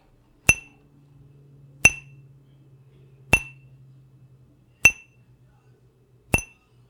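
A glass is flicked hard with a finger five times at slow, even intervals, like a tolling bell, each bright ringing clink decaying like a small bell, with a faint low hum underneath.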